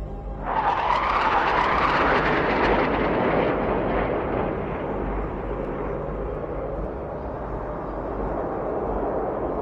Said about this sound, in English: We all looked to the sky. There were only a couple others. Three jets flew by.